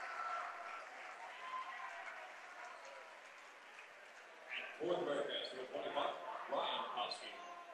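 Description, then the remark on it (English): A crowd of basketball fans in a gym claps steadily in a dense, sustained round of applause for a player coming out of the game, with a voice talking over it and a louder burst of clapping and cheering toward the end. “And Robinson will come out of the game and get a nice round of applause from the fans.”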